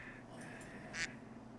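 A single short, nasal duck quack rings out against a quiet, steady background hum, preceded by a couple of fainter chirpy blips; no one is speaking.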